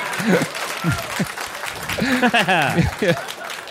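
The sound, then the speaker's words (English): Audience clapping forms a steady, noisy wash throughout, with a man's voice talking loudly over the applause and a few vocal reactions mixed in, as the audience claps at the mention of John Allen Coey, an American volunteer who died in combat in Rhodesia. “A lot of claps for dead Rhodesians.”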